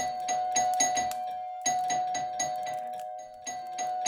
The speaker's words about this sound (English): A hand shot out towards my doorbell.